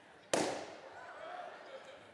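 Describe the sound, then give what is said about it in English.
A single loud, sharp balloon pop bursts out suddenly and rings off quickly, in a church sanctuary with balloons, followed by a low murmur of voices in the background. “We knew we'd have some popping ones.”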